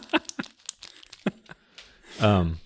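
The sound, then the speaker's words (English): Papers are shuffled and rustled together in several short crinkly bursts with brief pauses, followed by a moment of voice at the end. “This could also be our ASMR episode, where we talk about soft skills and shuffle nice. These papers together.”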